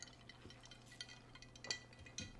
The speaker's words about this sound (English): Sorry, let's take a sip of iced coffee.